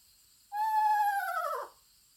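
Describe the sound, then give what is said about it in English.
A single eastern screech owl whinny, played as a recording during a conference presentation: a clear, slightly quavering call, held for about a second before sliding down in pitch at the end, heard alone against a quiet background. “To accentuate the story, I played the eerie whinny of an eastern screech owl to a full room of UFO enthusiasts.”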